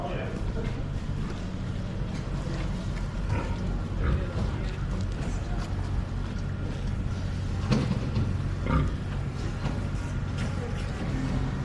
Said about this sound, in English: But the sound that pig just made, I would call a grunt, not a squeal.